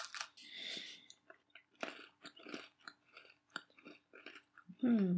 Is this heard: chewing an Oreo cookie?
yes